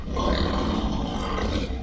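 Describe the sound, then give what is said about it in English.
A Night Wolf, a monstrous wolf-like creature in a jungle, lets out a loud, rumbling roar that holds steady for nearly two seconds, menacing, with no voices alongside it. “It's a Night Wolf, and he's got friends.”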